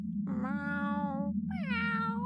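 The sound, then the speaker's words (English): Two drawn-out, loud cat meows, the second rising higher and more strained than the first, over a steady low hum in the background. “Why, no, it's a cat.”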